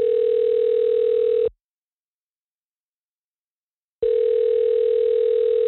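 A steady telephone tone hums loudly for about a second and a half as a phone call is dialed, cuts to silence for a couple of seconds, then resumes just as strongly; no voices are heard.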